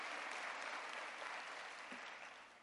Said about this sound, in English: Let's get a Lord a hand clap. And all the presenters did an excellent job. Let's give them a hand clap. Amen.